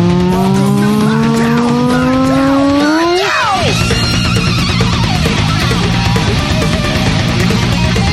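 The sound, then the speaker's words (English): A distorted electric guitar solo bends a long note slowly upward, then swoops sharply in a squealing dive before crashing into a dense, loud full-band section. “His guitar sounds like a fucking Atari.”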